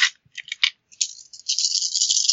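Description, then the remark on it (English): Three dice clatter onto a hard surface and land on three sixes: a few quick, sharp clicks, then a steady bright rattling that keeps going as they tumble, with no voices over it. “So I rolled 3 dice and I got 3 sixes.”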